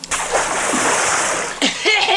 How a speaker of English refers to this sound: Suppose I could pour some soup, some of my signature broth on him to wake him up.